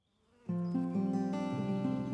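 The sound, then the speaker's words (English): A steady buzzing drone of bees with a rich, reedy tone, swelling in quickly and shifting pitch a few times as it continues without any talking. “But lockdown did have some benefits, not least for the bees.”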